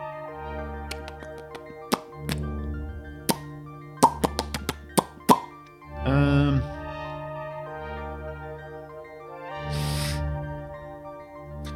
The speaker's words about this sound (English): And he's going to sit up and like splash his hands in the water a little bit and get up.